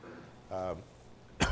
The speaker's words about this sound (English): excuse me. I do have this cough. I've had it for almost 3 weeks. I don't think that I'm really contagious with anything anymore. I think it's just hanging out and doesn't want to go away.